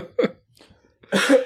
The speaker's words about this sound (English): Excuse me. Oh, please don't die. he coughs, subtle.